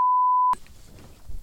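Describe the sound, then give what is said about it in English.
A steady, pure electronic censor bleep holds for about half a second, then cuts off abruptly into low, muffled room noise. “I didn't say that. Beep that.”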